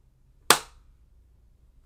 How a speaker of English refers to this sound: Okay. 3, 2, 1, go. Oh, barely missed that. You could hear the double clap there.